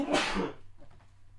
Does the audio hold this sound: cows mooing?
no